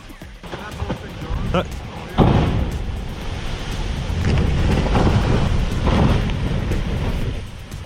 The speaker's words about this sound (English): This is the sound captured by Home with the Hoopers as they witness a melting glacier collapse into the ocean.